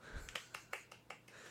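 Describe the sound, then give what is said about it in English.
Soft, polite golf-style clapping: about six light, evenly spaced claps in quick succession, quiet and crisp, with no voices. “Polite golf clapping.”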